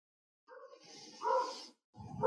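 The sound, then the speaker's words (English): A dog, Mino, barks in the background, a short run of yelping barks followed by another burst after a brief pause, moderately loud. “First, I want to bring light to the barking dog in the background.”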